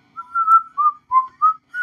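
Someone whistles a short tune up close, five or six clear notes rising and dipping in a quick melodic phrase, with no talking or other sounds around it.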